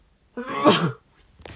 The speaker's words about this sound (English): Hello, I am about to sneeze. Excuse me.